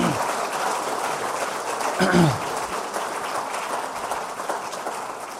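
A church audience applauds steadily, a dense, even wash of clapping that holds for several seconds, with a brief voice or whistle rising through it midway.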